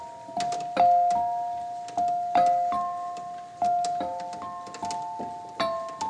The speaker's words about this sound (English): she stripped everything down, abandoned any electronic treatment, and played with bells, chimes, and objects that make cranky sounds.